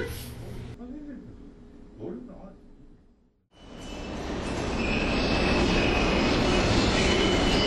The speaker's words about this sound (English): I head toward ZPT. The train should arrive in under 30 seconds. And of course, it does.